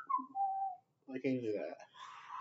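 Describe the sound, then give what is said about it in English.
A thin, wavering whistle slides downward for about half a second, then breaks into breathy blowing and voiced sputtering, like someone struggling and failing to hold a whistle. “For a while, I wasn't even able to whistle. I don't know how to whistle.”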